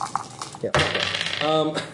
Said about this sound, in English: Throw a couple extra dice in there.